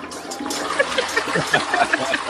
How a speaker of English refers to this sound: With the toilet flushing and